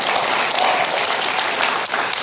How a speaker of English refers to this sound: Surely some parents will clap. Come on now.